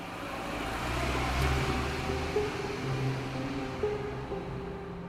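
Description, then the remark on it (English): A car engine hums steadily, a low rumble with faint tonal whine under broad road noise, holding fairly constant over a few seconds as the vehicle pulls away toward Chalamet's mansion. No one speaks. “And we see that their car kind of drive off towards Chalamet's mansion.”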